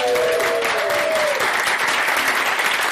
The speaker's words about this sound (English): So big round of applause for Rich.